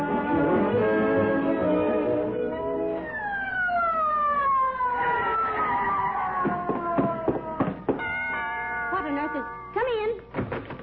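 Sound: ambulance siren approaching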